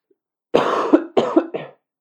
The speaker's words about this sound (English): Don't leave one cough in so that people can hear that I'm sick. Don't edit it out. Don't edit that out.